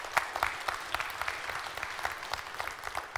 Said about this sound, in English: Can you give this man a round of applause? Praise God for him.